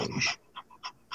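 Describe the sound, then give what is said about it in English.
A big Bernedoodle (Bernese mountain dog and poodle mix) puppy, over 125 pounds and under two years old, pants in quick, rhythmic huffs, starting with a heavier breathy burst followed by three shorter, evenly spaced breaths, with no talking. “He's a beast. He's 125 pounds plus. He's a puppy.”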